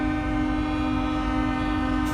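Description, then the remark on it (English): Truck horns from a convoy blare together in one loud, unbroken drone, several pitches layered and held steady without a pause from start to finish. “This is the honking.”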